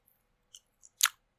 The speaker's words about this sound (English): munching on some raspberries. Crunch? They crunch. Let's see if they can hear it. They don't crunch.